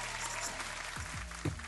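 A steady wash of clapping hands celebrating a 33rd birthday, dense and fairly loud, continuing through the whole moment with a faint low hum and murmuring underneath and a sharper burst near the end.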